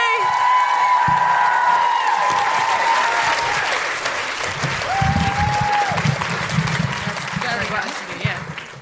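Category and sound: crowd, audience applause and cheering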